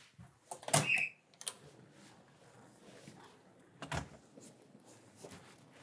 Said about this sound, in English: as she steps out of her front door in East Dulwich.